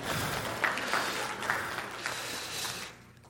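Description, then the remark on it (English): A crowd claps steadily for about three seconds, a dense wash of many hands at moderate volume, tapering off at the end, applauding as baby Jesus is placed in the manger during an evening service before a candle lighting. “Round of applause, please, for baby Jesus.”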